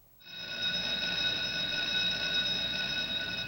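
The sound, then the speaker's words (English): A bell jingle, the Tell Bell signalling time for Did You Know?, rings out suddenly and holds as one bright, steady, shimmering tone for about three seconds, fairly loud, with no voices over it. “It's the Tell Bell.”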